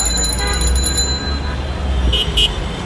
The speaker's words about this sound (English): Walking around Dhaka now, it's really, really busy. It's full of people. You hear rickshaws and cars.